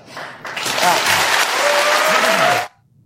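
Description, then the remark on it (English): A burst of dense crowd applause swells quickly, holds steady for a couple of seconds with a few voices and a faint whistle mixed in, then cuts off abruptly. “Yeah, that's a weird clap.”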